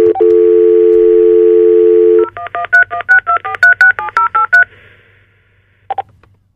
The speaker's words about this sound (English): Okay. So I'm going to try. We're going to redial. But when you call, when we call Europe, there's a delay. If they call here, then the line goes right to our phone.